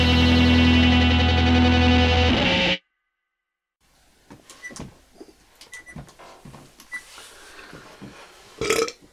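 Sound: belch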